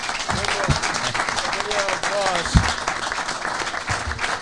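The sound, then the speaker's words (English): A crowd applauds steadily and loudly, a dense wash of clapping that fills the whole stretch, with scattered voices and cheers rising through it. “One more big round of applause.”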